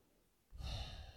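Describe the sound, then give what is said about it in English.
A dog lets out a short, breathy yawn close by, starting abruptly after a moment of quiet and trailing off with a soft airy whine. “I hear my dogs right beside me affirming that statement with a little yawn.”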